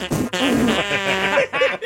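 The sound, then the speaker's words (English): A person blows a loud, sputtering raspberry with their mouth, imitating a fart in a couple of buzzing bursts lasting under two seconds. “And you're making fart sounds.”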